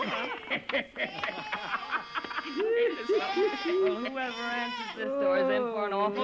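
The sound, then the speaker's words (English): A goat named Rudolph bleats repeatedly in wavering, quavering cries, fairly loud, with overlapping calls from a small group rising and falling over several seconds. “You're the sweetest little goat in the whole wide world.”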